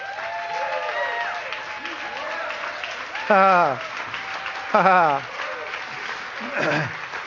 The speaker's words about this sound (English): And let's just give the Lord another clap.